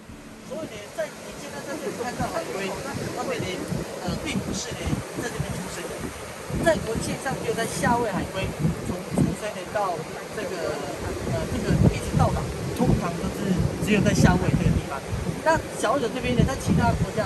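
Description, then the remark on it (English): Steady shoreline noise of wind buffeting and waves washing in fills the background, a constant loud rush with low rumbling gusts, while indistinct voices of an interview talk over it throughout. “The following audio clips are filmed next to the shore, so I apologize for the background noise.”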